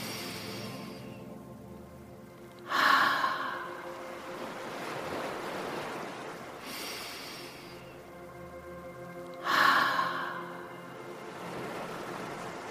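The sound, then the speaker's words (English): Slow, breathy exhales through an open mouth after breathing in through the nose, done as gentle 'ocean breaths' in starfish pose during a guided breathing exercise; they whoosh like ocean surf, two strong ones and a softer one several seconds apart, over a steady soft tonal drone with no talking. “Open your mouth and let the air come out like the ocean. Let's try 2 or 3 more gentle ocean breaths.”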